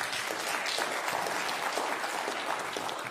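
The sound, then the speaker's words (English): A church audience claps steadily for about three seconds, a dense, even wash of many hands with no voices standing out above it. “And then our goal, yep, we're going to clap for that. We can clap for that.”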